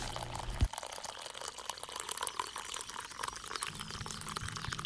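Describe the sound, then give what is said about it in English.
Hot coffee pours steadily into a cup, a continuous trickle and splash, with a brief clink near the start and no voices. “So pour yourself a hot cup and enjoy the show.”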